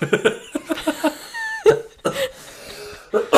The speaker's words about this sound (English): You got such a dramatic cough.